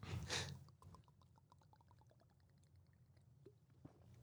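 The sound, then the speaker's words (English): A short burst of liquid noise, then a quick run of small wet gulps as someone swallows a shot of McGilliguddies straight from a tiny nip (airplane) bottle, fairly quiet, ending with a soft click. “You can actually hear that on the podcast. Gulping.”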